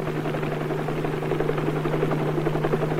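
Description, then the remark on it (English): A helicopter drones steadily overhead, its low engine hum and rapid rotor chop holding at an even, fairly loud level for a few seconds, with no talking. “What a difference it might make in our driving if we could have a bird's eye viewpoint or a whirly bird's eye viewpoint.”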